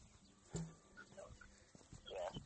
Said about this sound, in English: Ooh, this person has sheep. I'm not even joking. I'm walking by a house. And they have sheep.